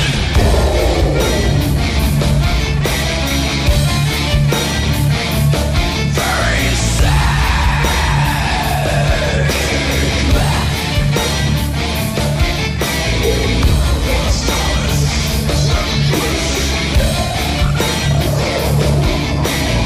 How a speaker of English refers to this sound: Songs where they're screaming so loud you can't understand the lyrics. They're all here. Metal Space Radio, playing loud and underground on the Core.